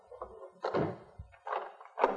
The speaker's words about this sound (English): Close the door and lock it